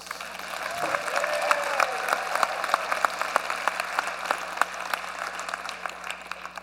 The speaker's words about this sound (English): All right, we got to clap better than that.